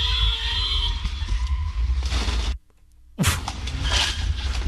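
Steady street traffic rumbles at an intersection on Hoover Street in Los Angeles, cuts out briefly, then a sudden loud smack of a car crash bursts in, followed by harsh noisy clatter and continued traffic roar.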